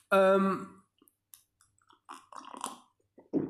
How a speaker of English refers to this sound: Sipping this coffee is so fucking good. I've only just started putting sugar in my coffee as well. I never really used to do that.